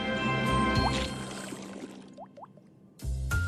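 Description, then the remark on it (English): Water splashes and pours for a moment, then several bright bloopy drip sounds fall one after another before the splashing noise returns, fairly loud. “Yes! Water! Water!”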